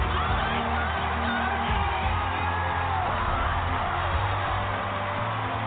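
A large crowd at a talent competition roars and cheers continuously after judge Gabrielle Union gives a contestant the golden buzzer, a dense, loud wall of noise with scattered whoops and shouts rising out of it, sustained without a break.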